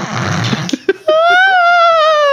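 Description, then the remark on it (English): A voice imitates a banshee, starting with raspy, breathy noise and a few choppy bursts, then breaking into a long, loud, sustained high wail that wavers slightly in pitch. “That's what they sound like. They scream. Banshees do.”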